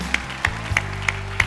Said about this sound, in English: Stand up if you would. Stand with me. Now, let's clap our hands unto the Lord, shall we?